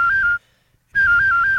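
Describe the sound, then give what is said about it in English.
A professional whistler imitates a cell phone ringing: two loud bursts of rapid, high warbling tones that flip between two close pitches, separated by a short silence. “Like, for example, I can imitate a cell phone.”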